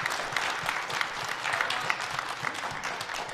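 An audience claps steadily, a dense patter of many hands with scattered sharper claps standing out, sustained at an even, moderately loud level throughout with no voices.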